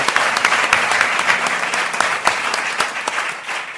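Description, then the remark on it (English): A crowd applauds steadily throughout for a woman who is celebrating her 50th birthday, a dense wash of many hands clapping at a fairly even loudness with scattered sharper claps standing out, and no voices. “Can you just give a round of applause?”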